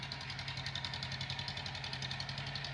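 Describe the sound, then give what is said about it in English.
A tractor engine runs steadily at a low, chugging idle as it is used to plow a charred field, its rhythmic rumble continuous with a faint rattling vibration throughout. “The next morning, Sam got on his tractor and plowed the charred field.”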